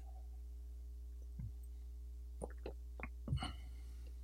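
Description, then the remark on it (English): Someone sipping a drink: a handful of short, wet slurping and swallowing sounds at an irregular pace, set against a steady low hum, with no talking. “Sorry, I have to take a sip here. So for those who complain about hearing me sipping, brace yourself.”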